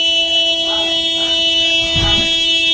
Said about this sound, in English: They warring with their horns over there. God, dog. Yo, this is the greatest thing I've ever heard.